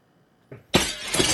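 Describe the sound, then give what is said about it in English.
Glass is smashed with a stone: a brief dull knock, then a loud, bright crash of shattering glass that keeps crackling and tinkling until the end. No one speaks. “Du, han krossar glaset med en sten.”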